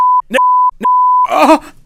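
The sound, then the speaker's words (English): A loud, steady censor bleep tone sounds in three stretches, broken by brief snippets of voice, and then a person groans or exclaims as the beeping stops. “The beeps have blown out my fucking eardrums,”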